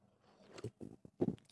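A quiet sip of an IPA: a soft slurp followed by a few brief wet mouth and swallowing sounds, with no talking.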